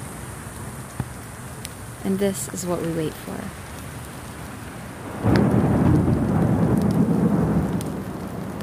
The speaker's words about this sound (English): Storm is this inverse winter's sweet respite. When it happens, you know why it is they call it the monsoon. There's so much more emotion in it.